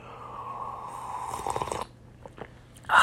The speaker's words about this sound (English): The first sip of coffee. Well, this isn't the first sip, but makes me want to have a sip.